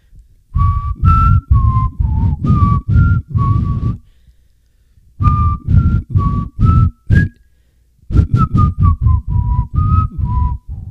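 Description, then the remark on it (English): Someone whistles a tune in short, choppy notes, grouped into three bursts separated by brief pauses. The whistling is fairly loud and no one speaks. “Your whistling sucks.”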